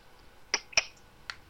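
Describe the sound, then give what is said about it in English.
Three crisp finger clicks, the first two close together and the third after a short pause, each a sharp bright snap with no talking around them. “And every time he talks, he's clicking and pointing his finger.”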